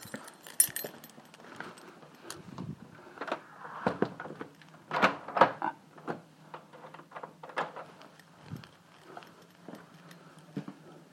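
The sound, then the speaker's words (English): Keys jangle and clink in irregular bursts as a car is locked, with scattered metallic rattles and soft handling knocks, no voices. “Lock the car, something I don't always do.”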